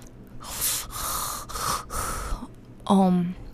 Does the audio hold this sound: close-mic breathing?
yes